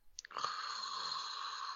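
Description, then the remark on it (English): A person fakes a snore: a few quick rasping catches, then one long, loud, wheezy drawn-out breath that holds steady to the end, with no talking. “Go ahead, snore.”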